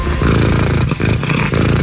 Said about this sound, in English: she, along with her cat Bella, are in the Guinness Book of World Records. Awesome. Loudest purr.